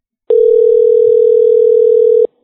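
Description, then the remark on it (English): A single steady ringback tone from an outgoing phone call, a loud, even electronic hum lasting about two seconds before cutting off, with no voices. “Our paraplegic friend might be running towards the phone as we speak.”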